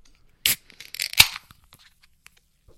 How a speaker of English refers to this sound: Okay, so we'll do a cherry pop. Yeah. All right, I'm going to pop this cherry pop.